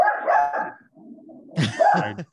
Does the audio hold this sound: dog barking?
yes